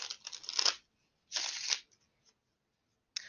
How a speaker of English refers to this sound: We're gonna move over to the tarot, Mucha. Gonna give it a few shuffles.